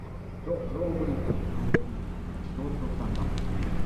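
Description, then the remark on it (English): A passing motorboat's engine drones steadily, a continuous low rumble that stays fairly loud throughout, with a faint murmur of voices and a brief sharp click partway through. “Oh, another boat's going by. Just a second. They're a little bit loud.”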